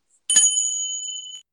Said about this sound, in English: Ah, Ting Cha, Tibetan chime. There you go. Love it. Excellent. So my Salt Lake City snow globe and my Tibetan chimes, and now I have anchored us, or anchored me